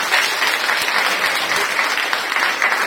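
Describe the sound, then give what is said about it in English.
An audience claps hands for Jesus in a steady, dense burst of applause, loud and continuous for about three seconds with no pauses, the many overlapping claps blending into a bright crackling wash. “Let's clap hands for Jesus and we can.”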